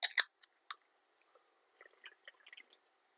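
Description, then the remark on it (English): A sharp metallic crack and short fizz of a can of Red Bull energy drink being opened, followed by a few quieter clicks and soft wet gulping sounds as it is drunk, with no one talking. “I needed to open up this drink for the next topic that we're going to talk about.”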